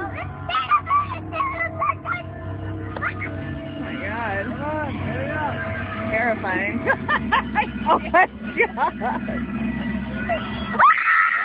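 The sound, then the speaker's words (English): A woman screams in terror, a series of loud, wavering shrieks and wails that rise and fall over a steady low drone, ending in a sudden sharp burst. “Anyhow, it was terrifying. I screamed and I cried.”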